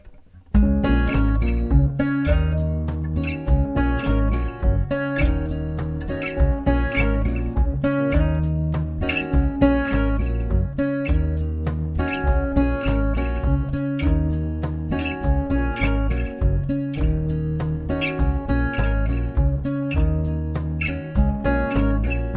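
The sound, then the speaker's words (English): A band plays a song on Wurlitzer electric piano, guitar and bass, with sustained chords over a steady, even pulse of strummed or plucked attacks, holding a full, consistent loudness for about twenty seconds. “I'm going to leave you with one more song. This is called ….”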